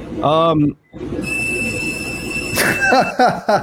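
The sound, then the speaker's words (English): A laser machine gives off a steady, high-pitched whistle with faint overtones for about two seconds over a low rumble, with brief voices talking before and after it. “Yeah, I hear it. I hear it definitely whistling.”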